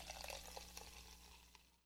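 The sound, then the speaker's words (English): Truly Lemonade Hard Seltzer is poured from a can into a glass, a steady gurgle and fizz with small splashy bursts that slowly tapers off. Fairly quiet, no talking. “Right, we're going to give it a pour into our glass so we can get a full idea of this.”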